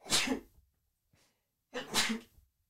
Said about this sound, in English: I'm going to sneeze. Sneeze real quick. 1 second.